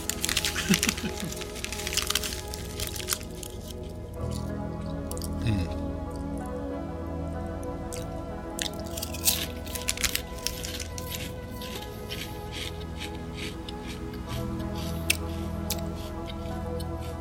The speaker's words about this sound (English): I'm still chewing. All right. That's good. Gotta love potato chips.